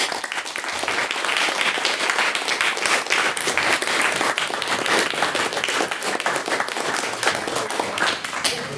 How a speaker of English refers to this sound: But Mr. Ali Raja was also making his maiden speech, so he does deserve another applause.